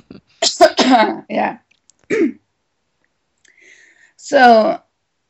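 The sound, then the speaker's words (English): A cluster of harsh coughs in quick succession from a person with a slight cold, a short pause with one more, then a quiet gap before a final loud, raspy cough. “Just feel free to cough away.”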